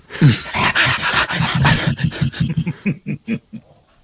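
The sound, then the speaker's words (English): A dog that has just peed Monster Energy all over a linoleum floor whimpers and growls in a rapid string of short vocal bursts, fairly loud at first and turning choppier and more clipped toward the end, with no talking. “This dog just peed Monster everywhere.”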